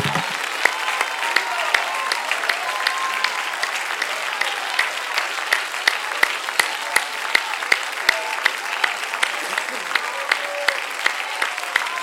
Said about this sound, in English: If you're glad that God hears us when we pray, if you're glad that God sees us when we give, why don't you clap your hands and why don't you shout?